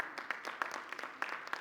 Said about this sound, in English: You don't have to clap for everybody. I mean, it's fine if you want to.